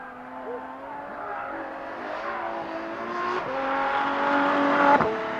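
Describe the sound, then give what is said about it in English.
A McLaren 720S sports car engine revs steadily with rising harmonic tones, building in loudness toward the end with a sharp burst near the finish; loud, no talking. “It's a beautiful sounding car.”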